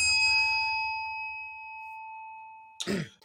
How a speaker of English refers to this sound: I didn't keep a time. I don't know if I went 5 minutes, but the bell is there.